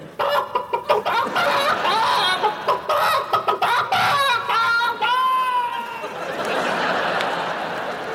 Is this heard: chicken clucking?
yes